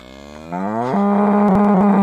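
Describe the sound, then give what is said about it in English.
A cow lets out one long, loud moo, its low bellow rising in pitch and swelling in strength before holding steady, with a few faint clicks near the end. “I've only ever known milking the cow. Cow.”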